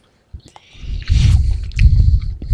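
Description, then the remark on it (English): Wet chewing on soft, sticky Hi-Chew fruit candy, a few smacking bites at first and then a steady run of squishy mastication, with no one talking. “My jaw would hurt when I got, by the time I was done. from chewing them all.”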